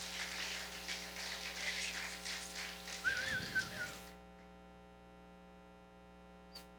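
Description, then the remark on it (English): A couple of short, sharp whistles ring out from a church audience amid a burst of noisy cheering or clapping as someone comes up, which cuts off after about four seconds, leaving a steady electrical hum. “Y'all just go, whenever you see somebody coming up, y'all clap maybe a woohoo or a whistle from someone.”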